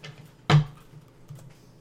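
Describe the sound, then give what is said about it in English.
Playing cards being shuffled: one quick, crisp riffle burst, then faint papery rustling and a softer flick. No one speaks. “I forgot how much I love the set of cards, because they do shuffle really easy.”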